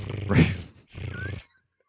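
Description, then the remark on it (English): A person imitates a cat purring with two short, rough throaty rattles separated by a brief gap, fairly loud, followed by silence. “Can you, any of you guys purr?”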